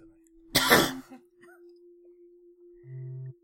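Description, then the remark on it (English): A single harsh cough bursts out into the microphone, followed by quiet with a faint steady hum and a brief low buzzing tone near the end. “cough is correct.”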